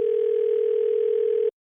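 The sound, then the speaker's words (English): A steady, unbroken telephone dial tone hums for about a second and a half at moderate volume, then cuts off abruptly, with no voices around it, as a call is placed to the phone provider Cricket Wireless. “They knew Steven's phone provider was Cricket Wireless, so they gave them a call to explain the situation.”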